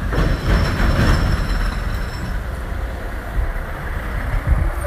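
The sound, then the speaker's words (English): A big Mack truck roars past, its heavy engine and tyres making a loud, steady low rumble with a faint high whine over it, and no one speaking. “Whew, big ass Mack truck.”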